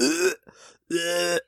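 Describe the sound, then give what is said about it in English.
A loud mouth-made fart noise: two buzzy, droning blasts with a brief breathy sputter between them, a voice imitating flatulence with no other talk around it. “Fart noise.”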